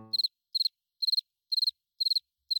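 Crickets chirp in a steady, even rhythm: six shrill, high-pitched trills, each a quick burst of three or four pulses, repeating about twice a second against otherwise quiet surroundings.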